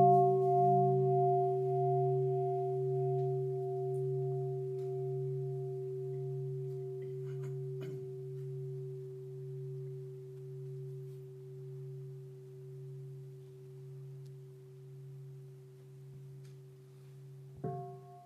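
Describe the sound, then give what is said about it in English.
A deep bell is struck once and rings on in a long, humming resonance that wavers with slow pulsing beats as it gradually fades, then a second strike sounds just before the end. “May the sound of the bell penetrate deeply into the cosmos.”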